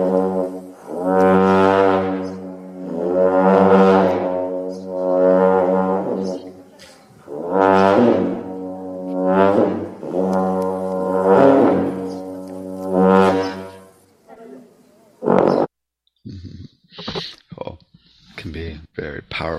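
Deep, buzzing blasts from a 10-foot Tibetan long horn, about six sustained droning notes that each swell and fade in a steady rhythm, rich in harmonics, followed by a few sharp, brief clattering sounds.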